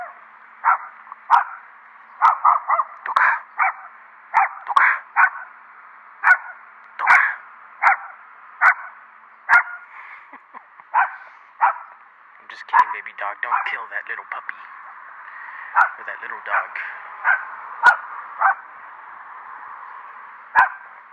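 A small dog on a walk yaps at another dog over and over in short, sharp bursts, keeping up a steady, persistent barrage for the whole stretch, with a few quicker clusters of yips mixed in.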